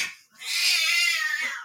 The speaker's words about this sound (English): And my cats are apparently having a conversation right now.